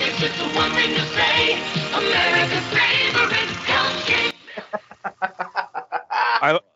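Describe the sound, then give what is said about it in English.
A crowd of geese honks loudly in a dense, overlapping chorus in a TV commercial, then the racket drops to a quicker series of separate, shorter honks. “The geese out there, come on, y'all.”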